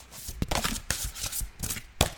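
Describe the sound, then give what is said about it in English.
A deck of oracle cards being shuffled, a quick run of crisp riffling slaps and papery flutters with a few sharper snaps, no voices. “So let's give it another shuffle and see what else falls out to build on top of that message.”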